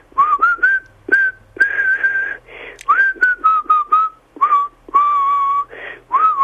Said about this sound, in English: I'm always whistling, but I'm terribly bad at it. Well, go on, let's have give us a bit. No, yay! No, hey! I'm tone deaf. Come on, give us a whistle.